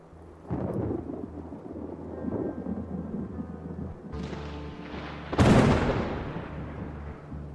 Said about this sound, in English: The crackling of thunder woke me.